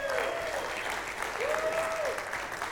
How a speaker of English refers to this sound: We're also grateful for those online. We have a church that's been going online since the beginning of COVID and before. So let's cheer for them today, those that are online.